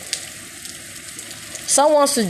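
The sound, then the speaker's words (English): Raindrops falling outdoors in nature make a steady, dense hiss with faint crackly patter throughout, and a person starts talking over it in the final moments. “I'm here with the sound of the raindrops in nature, inspiring me just to have a beautiful, blissful day.”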